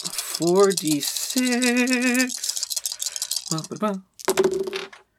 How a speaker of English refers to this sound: Did you use a hype die? I didn't. I rolled 4d6 and I got 1, 2, 3, 4.